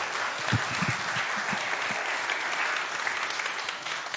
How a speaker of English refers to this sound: Give them a little round of applause. That's brilliantly read.